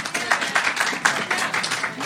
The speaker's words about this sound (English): Clap if you'd make out with Kenny, you guys.